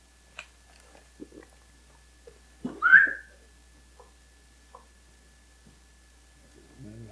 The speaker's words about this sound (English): He was napping over there. He heard me whistle.